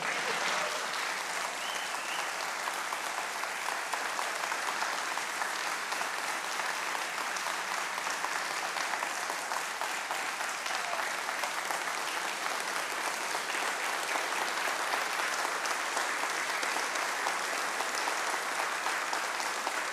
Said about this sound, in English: I hope some of that applause was to the Lord for the privilege that I am able to be here today and to share with you.